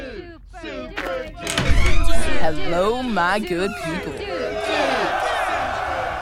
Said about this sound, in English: Can you hear the crowd? It's so cool. All cheering for me.